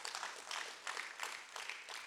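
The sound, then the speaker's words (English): An audience claps together in a dense, steady patter of many hands, swelling and easing in quick waves. The applause is fairly soft, with no voices heard over it. “Yes, that's a great place to clap.”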